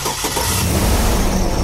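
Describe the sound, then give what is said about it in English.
A 6-liter V8 engine, its battery removed and a Noco Genius Boost lithium jump starter hooked directly to the battery cable, cranks briefly and catches, settling into a loud, steady, deep rumble with no one speaking. “We removed the battery from the 6-liter V8 engine and hooked Boost directly to the battery cable.”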